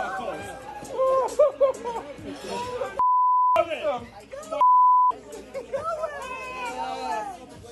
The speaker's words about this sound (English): A lot of beeps going on.